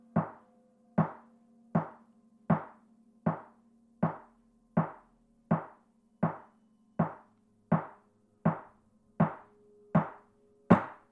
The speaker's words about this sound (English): 15 knocks.